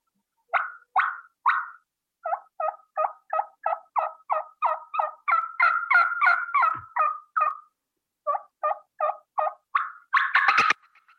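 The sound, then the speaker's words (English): A turkey hen's fly-down cackle, imitated on a game call to simulate a hen that just flew down: a quick run of sharp, excited clucks that speeds up and grows louder, ending in a brief wing-like flutter. No talking. “That's a fly down, and that just simulates that a hen just flew down.”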